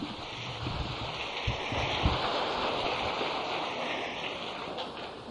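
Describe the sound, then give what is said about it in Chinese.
Heavy rain pours down in a steady, dense roar that fills the whole clip, loud, with a few low thumps and no voices, heard from inside during a group meditation session. “上帝说不要再讲话了，打坐了，他太吵了。”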